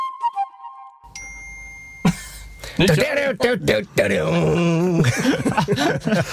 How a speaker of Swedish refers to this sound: Fantastiskt, var det där plinget verkligen räck-knappen? Nej, det var någons telefon. Ja. Ja, det där var ju min telefon som sköt iväg sig där.